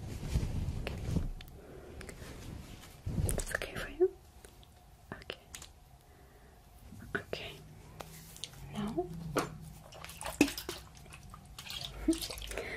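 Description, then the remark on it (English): Short hissing spritzes of clear water from a spray bottle wetting a person's hair, several bursts at uneven intervals, fairly soft, with quiet whispering and faint handling sounds in between. “I'm going to wetten your hair with this water. This is just clear water in this bottle.”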